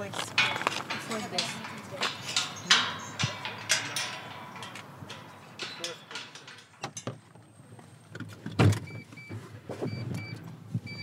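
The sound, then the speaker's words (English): Mitsubishi Colt car sounds: a run of mechanical clicks and rattles, then the steady whine of a power window motor, ending with a solid car door thunk. “We kept this car just for the fishing before the war.”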